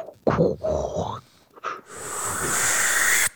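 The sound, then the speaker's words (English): A voice imitates a giant Hoover vacuum cleaner sucking: a few short, throaty, breathy bursts, then a steady, loud, airy hiss held for about a second and a half before stopping abruptly. “But the Oscar frontrunner right now, for Best Picture, is Nomadland, which has been just Hoover vacuuming up awards everywhere it goes, like a giant Hoover vacuum, like I said.”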